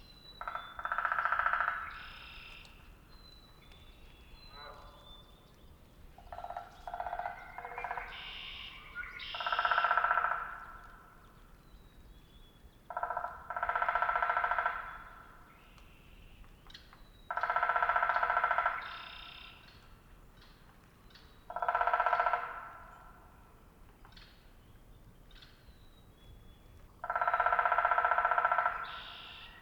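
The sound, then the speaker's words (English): A downy woodpecker drums on a hollow tree in the woods in six or seven loud, resonant rolls, each lasting a second or two and spaced a few seconds apart, with faint high bird whistles between them. “I take a quick jaunt in the woods and soon home in on a downy woodpecker, drumming on a hollow tree.”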